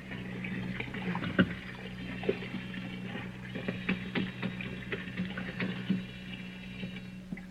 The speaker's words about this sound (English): There's the sink. Some hot water. There, that's it. A wash rag around the sink bowl.